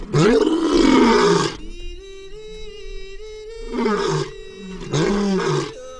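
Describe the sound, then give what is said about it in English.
A lion roars in three loud, rough bursts, with a steady, droning tone held underneath between and through them. There is no talking. “It'll be, I'll be like, and so roars the lion.”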